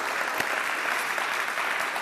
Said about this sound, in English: North Star is a place where everybody's welcome, nobody's perfect, and anything is possible. If you believe that, give God another praise clap today.